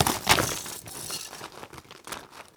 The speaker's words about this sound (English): With a thunderous war cry, Mr. Mythology dives at the frozen Korax and smashes the creature with his electric sword. The Korax shatters into 1,000 glistening pieces.